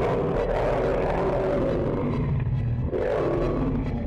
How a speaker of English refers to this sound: A terrible roar sounded above us, again strangely familiar.